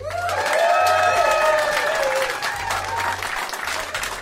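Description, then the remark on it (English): An audience bursts into loud, sustained applause for two performers, dense clapping mixed with whoops and cheers, with a few rising whistle-like shouts rippling over the steady roar. “I'd like you all to make a tremendous amount of noise for”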